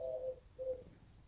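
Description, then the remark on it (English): A pigeon on a windowsill outside coos twice, two soft low hooting calls separated by a short pause, with no talking. “pigeon, it's on the windowsill.”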